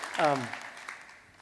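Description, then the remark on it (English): An audience claps for the speaker's parents' 60th wedding anniversary in a soft, steady patter that gradually fades, with a brief vocal cheer or exclamation rising over the start. “I'll tell them you clap for them.”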